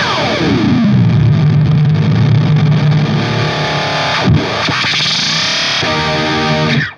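Loud, distorted electric guitar fed through an Ibanez Echo Shifter delay pedal, with repeats building into a dense wash that swoops up and down in pitch as the delay time shifts, then cuts off abruptly.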